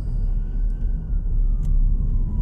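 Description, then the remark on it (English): An ambulance siren drones past with its pitch sliding slowly downward as it moves away, heard over a heavy, continuous rumble of traffic. “Hold on, I got an ambulance going by.”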